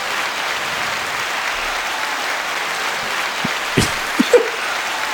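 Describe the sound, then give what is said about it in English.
Steady audience applause in Cincinnati fills the whole stretch, a dense wash of many hands clapping at an even level, with a few sharper claps or shouts briefly poking out near the end. “you guys are a lot of applause out there.”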